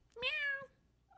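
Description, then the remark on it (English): A single cat meow, about half a second long, clear and tonal with a slightly falling pitch, heard on its own against a quiet background. “Meow. Oh, that was perfect.”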